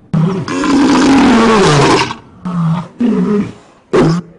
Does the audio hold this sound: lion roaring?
yes